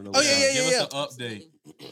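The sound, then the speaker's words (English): A loud sneeze bursts out with a voiced, harsh edge, then a man starts talking right after it. “Bless you.”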